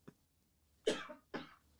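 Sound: cough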